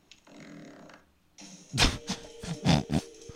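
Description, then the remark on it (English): A fart: a low, buzzing rasp that trails off, then a louder run of wet, sputtering bursts in quick irregular succession. No one speaks. “The guy farted. That's his intro.”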